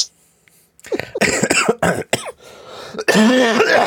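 cough

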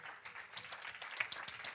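audience hand clapping

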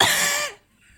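human cough

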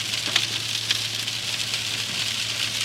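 heavy rain falling outside

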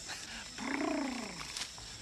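house cat meowing

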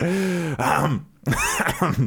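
throat clearing

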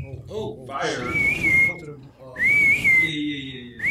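person whistling

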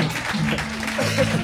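audience applause

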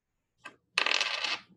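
dice being rolled

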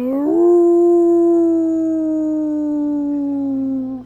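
large creature howling

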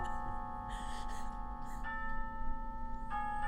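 grandfather clock chiming

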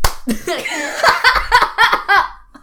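hands clapping

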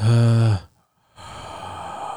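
sharp inhale

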